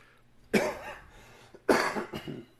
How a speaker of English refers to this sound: You all right? Excuse me. There's that cough.